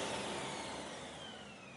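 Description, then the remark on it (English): A vacuum cleaner, the story character Vinny, runs steadily while cleaning a floor, with a broad, loud whooshing roar and a faint high whine that slowly drifts downward in pitch, no voices present. “The Vacuum That Couldn't”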